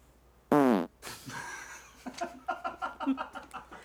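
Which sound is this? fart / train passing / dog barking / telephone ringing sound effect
fart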